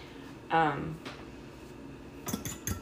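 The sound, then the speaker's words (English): A brief vocal sound, then a quick burst of metallic clinks as a utensil whisks eggs in a bowl, knocking against its sides a few times in an irregular rhythm. “I can't get the eggs to mix without slamming the thing in the side of the bowl.”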